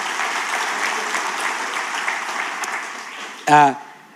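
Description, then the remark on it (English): An audience claps steadily for a few seconds in applause for engagements, a dense crowd patter at moderate volume, ending in a short burst of a voice calling out over the applause. “Do you want to clap for the engagements?”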